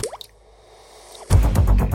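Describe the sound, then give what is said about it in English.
A single drop of blood from a nosebleed falls into water with a bright, rising plop, followed by near silence before a loud, dense wash of rumbling sound abruptly takes over. “Agatha looks down to find a drip of blood in Rumi's water.”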